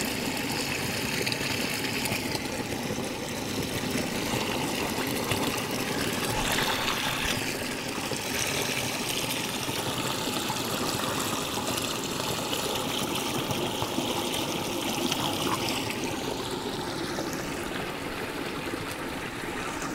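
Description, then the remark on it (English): Water trickles and burbles steadily over rocks for the whole stretch, a continuous babbling stream with no pauses and no voices, its texture shifting slightly as the flow splashes and gurgles. “I'm just gonna pop over on that conglomerate and have myself a moment with the water.”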